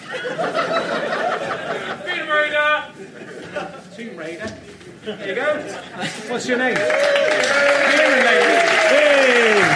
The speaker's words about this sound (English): Round of applause. He's won all that stuff.